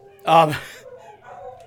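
Dogs howling: one loud, tonal howl rises sharply and fades within half a second, followed by softer, wavering howls trailing off in the background.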